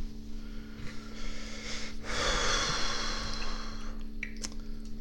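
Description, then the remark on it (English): A single muffled, stifled cough bursts out midway, half-swallowed and breathy, with a steady low hum underneath and no talking. “just ate a cough.”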